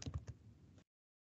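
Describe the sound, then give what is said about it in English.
A quick burst of three or four soft keyboard clicks, faint, trailing into quiet background noise before cutting to silence. No one speaks. “I heard him heard the keyboard.”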